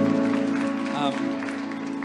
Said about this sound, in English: We clap here. We get involved here. You're just going to have to get used to it.